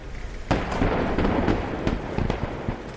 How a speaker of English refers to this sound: We also saw them blow up all of the structures that were on the site as well.